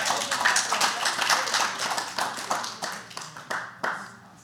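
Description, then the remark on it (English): A church audience claps during a sermon, a dense, steady burst of applause that gradually thins out into a few scattered, sharp individual claps near the end. “If I ain't preaching, you don't clap.”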